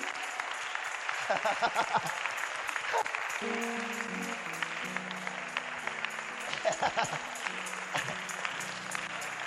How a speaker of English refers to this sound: Give a clap of hands to the Lord.